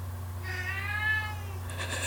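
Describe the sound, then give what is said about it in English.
A single drawn-out meow from a male pet cat rises and falls over about a second over a steady low electrical hum, followed by a brief faint rustle. “Can you hear my cat? He does this every time I try to record.”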